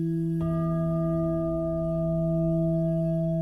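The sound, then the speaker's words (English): A prayer bowl is struck once, then rings on in a smooth, steady hum with a low fundamental and a few clear overtones, holding even and loud without fading. “You might think of useful electric energy like the smooth, steady sound of a prayer bowl, like this.”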